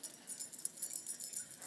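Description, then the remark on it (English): A bunch of keys jingles steadily for a moment, a quiet, thin metallic shimmer of rapid little clinks with no voices over it. “So can you help me by jingling your keys, or perhaps a grown-up sitting near you has keys you can jingle?”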